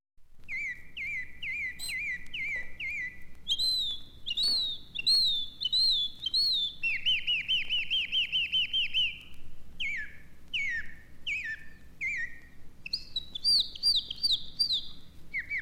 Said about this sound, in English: Oh my goodness, how I do love them birds.